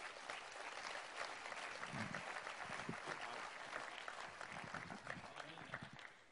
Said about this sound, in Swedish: Ska vi ge honom en stor applåd?